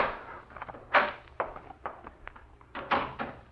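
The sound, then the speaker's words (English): A doorknob turning and rattling in a door, a run of irregular clicks and soft knocks with short gaps between them, and no voices. “The knob was turning in the door.”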